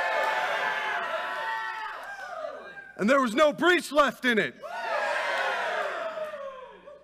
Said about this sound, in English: You're right, we missed that. Let's try that again. Let's all give a cheer.